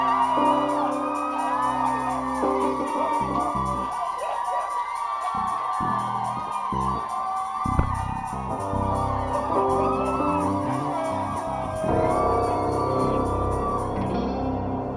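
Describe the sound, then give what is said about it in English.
A church audience shouts, whoops and cheers continuously over loud music, voices overlapping in an energetic, sustained, reverberant roar. “We believe in shouting. Do you believe in shouting?”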